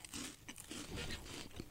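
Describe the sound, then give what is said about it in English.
Crisp crunching of someone biting into a sandwich of bread, peanut butter, jam and Cheetos, with several crackly bursts in quick succession as they chew, no talking. “You got the crunch, you got the jammy stuff, you got the peanut butter, you got the bread.”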